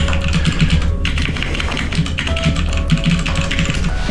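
Rapid, clattering computer keyboard typing with dense, irregular keystrokes, isolated over a steady synthetic cyber hacker music bed with a low pulsing bass and sustained tones.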